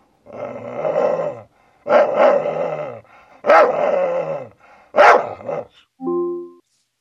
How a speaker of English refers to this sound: Alexa, can you bark? Okay, here's Woof.